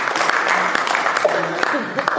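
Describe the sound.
An audience breaks into steady, dense applause, a continuous crackle of many hands clapping at even loudness, with a few faint voices mixed in beneath it.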